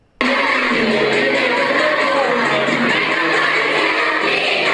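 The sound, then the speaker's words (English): A concert crowd of kids screams nonstop, a dense, high-pitched roar of shrieking voices that bursts in after a brief silence and stays loud and steady throughout. “Isn't that a great little line for the little kiddies to be screaming?”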